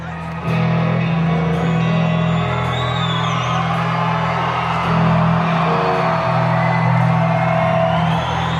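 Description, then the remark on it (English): A concert crowd cheers loudly and continuously, with whoops and shouts rising over a dense, steady roar that holds for several seconds after a sudden start. “okay, the crowd is present and the crowd is going.”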